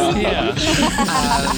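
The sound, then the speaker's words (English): A voice growls a loud, raspy roar in imitation of heavy metal music, sustained and gritty for about a second and a half. “Yeah, there's some heavy metal, you know, it's like the roar, whatever kind of playing.”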